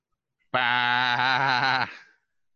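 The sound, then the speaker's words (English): A single loud, sustained bleat lasting over a second, delivered by a human voice imitating a sheep, with a wavering, nasal quality and a quick fade at the end. “"Bah!" He's a sheep.”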